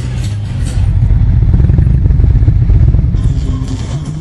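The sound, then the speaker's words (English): Small mini bike motorcycles that look like race bikes rev and drone loudly and continuously at a mini bike racetrack, revving up from the starting line for a race, a dense buzzing roar that swells slightly midway and carries some clatter, with no clear talk over it. “There's little bitty motorcycles that look like race bikes, so they're fixing a race, so you'll hear them coming around here in a minute.”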